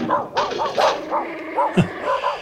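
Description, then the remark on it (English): A dog barks and yelps in a rapid, insistent string of about eight sharp, high-pitched calls, fairly loud, with no one talking over it. “Just one second, we might need to edit this part, but a dog is making an enormous amount of noise.”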